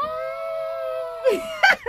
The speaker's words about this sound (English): Scream if your spiritual hygiene is clean.